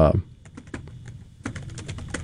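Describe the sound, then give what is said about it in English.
Rapid keystrokes on a computer keyboard, a quick irregular patter of clicks, pausing briefly and then resuming in a faster burst, with a short voice fragment at the start. “We'll look it up, but I'm pretty sure that the same year they won baseball, and you can hear me typing.”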